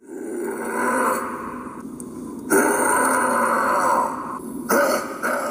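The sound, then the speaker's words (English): Someone imitates a Bigfoot howl as a thank-you to a show guest: a loud, rough, growling vocal roar, held in long stretches and broken by two brief pauses. “want to give a Bigfoot howl to”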